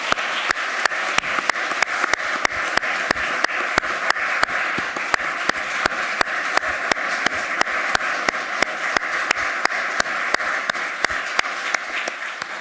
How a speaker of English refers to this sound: That concludes our re-argument. How about a round of applause for our two wonderful advocates?